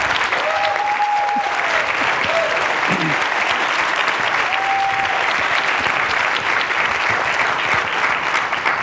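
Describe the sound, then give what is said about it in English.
A steady round of audience applause thanking a volunteer committee, students and staff members, dense and continuous clapping at a fairly loud level throughout, with a few faint tonal whistles or voices briefly rising above the noise. “And I know and I'm sure that applause extends to the students, staff members who I've never met, but all of whom have worked quite hard on this work.”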